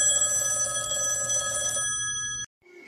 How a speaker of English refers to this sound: Oh, hey, the phone's ringing. Can you get that? I think it's line one.